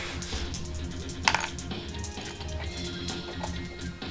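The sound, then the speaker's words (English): Dice rolled for attack damage in a game clatter onto a hard tabletop with one sharp knock followed by a few faint tumbling clicks, set against a steady low background hum. “Do you need more dice? No. I'll just roll these twice.”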